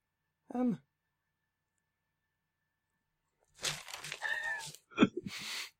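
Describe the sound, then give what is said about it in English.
A short voiced murmur, a few seconds of quiet, then crinkly paper rustling in a couple of noisy bursts, with some brief vocal sounds mixed in near the end. “I might leave the paper rustling in just for a laugh.”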